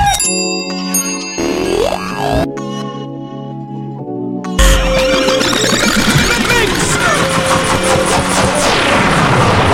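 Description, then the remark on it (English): A track is cut into a chaotic DJ rewind, with choppy, stuttering fragments and a warbling pitch sweep, before the music drops back in at full volume and plays on. “Rewind this one for me. Pull it. I said pull it!”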